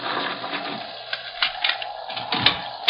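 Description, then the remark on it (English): Heavy bars on a door being drawn back to unbar it: a run of rattling metallic clunks and scrapes over a steady background hiss, with a sharper knock near the end and no voices. “One moment, gentlemen, I'll unbar the doors.”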